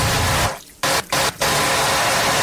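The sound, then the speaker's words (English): Water gushes loudly from a tap in a steady hiss, sputtering and cutting out briefly a few times before flowing again at full strength, in a Fear the Walking Dead scene where the water system of a ship is being checked. No one speaks. “This is a scene where Fear the Walking Dead guy is over on the other ship, and they're checking the water system, and it scared me.”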